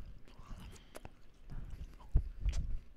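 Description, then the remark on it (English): Chewing on tough, spicy beef jerky, with irregular wet smacks and crunchy clicks that grow louder toward the end, no talking. “Oh, that motherfucker's spicy, bro. I don't want to keep chewing.”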